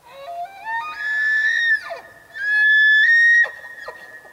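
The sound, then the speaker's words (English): A male elk bugles twice: a rising, reedy tone climbs into a long, high-pitched whistle, then breaks off with a drop. The second call is shorter and ends in low grunting chuckles. “We're gonna put a sound effect in. Okay. Of an elk noise.”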